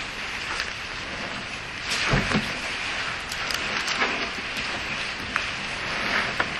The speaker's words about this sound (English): And I hope that you all in the back, as the rain is starting to build up, can still hear.